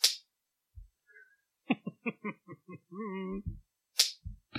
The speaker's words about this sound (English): So I was just like, I'm going to find a skin slap sound effect for my soundboard, and this is what I get.